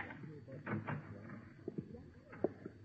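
The door of a rooming house is unlocked and opened: a few soft metallic clicks and rattles from a key turning in the lock, then the door is pushed open. The sounds are quiet, with no voices.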